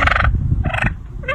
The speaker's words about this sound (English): Guys, that is the love call of a turkey. Wow, a turkey? That's a turkey.